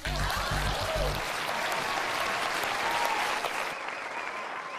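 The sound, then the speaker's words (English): A crowd bursts into loud, dense applause, a steady wash of many hands clapping that holds strong for several seconds before thinning slightly toward the end, with a low thumping beat underneath at the start. “Please clap.”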